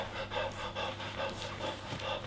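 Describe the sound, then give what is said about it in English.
A voice imitates a pack of animals panting across a prairie: quick, breathy huffs repeating in a steady rhythm, about two per second, moderately loud, with no other talking. “The pack stare into your camp. They're panting, sounding across the prairie.”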